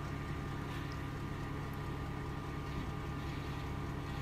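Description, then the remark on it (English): Water bubbling at a steady boil on high with an egg bobbing in it, a continuous low churning rumble with a dense, even texture and no pauses, heard on its own without any talking. “The water's bubbling now, but I'm guessing that's just because it's boiled.”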